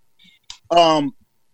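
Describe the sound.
A caller's voice breaks up over the line: a few faint chirps and a click, then a short distorted, buzzy burst of voice that cuts out abruptly into silence.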